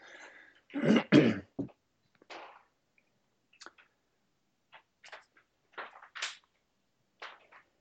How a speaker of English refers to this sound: hold on. Good moment to clear my throat too.